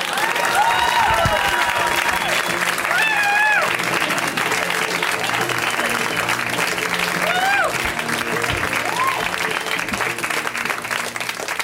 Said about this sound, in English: You clap now.